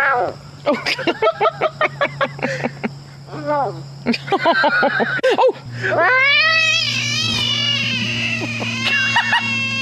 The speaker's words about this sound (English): I'm going to go with large frog. I feel like I used to hear that when they'd get eaten by snakes. I would find them because I'd hear that noise. Well, it is a large frog.